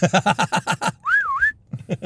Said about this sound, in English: Oh, yeah, remember that whole thing when, like, you whistle and a horse would come? Yeah, Red Dead Redemption is what that... You can do that in Zelda, too.